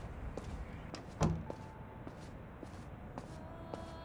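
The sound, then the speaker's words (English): Steady footsteps on a stone floor echo through a reverberant monastery corridor, each step leaving a short ringing tail, with one heavier thud early on, like a door shutting. No one speaks. “Hear the soft echoes of your footsteps on the stone floor”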